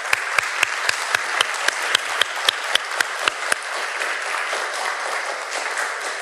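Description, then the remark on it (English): An audience applauds steadily to thank the speakers, with a few sharp, rhythmic individual claps standing out for the first few seconds before the applause continues as an even wash of clapping. “If we could have one more round of applause for our speakers to thank them.”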